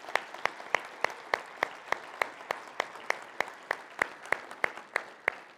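Steady hand clapping in thanks and appreciation for the mothers standing in the audience, about nineteen sharp, crisp claps at an even pace of roughly three per second, heard over a low, constant murmur with no speech.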